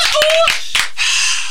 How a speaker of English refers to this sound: Nobody wanted to clap for them. Okay, let's clap for these guys. Come on, everybody. Give it up for these guys.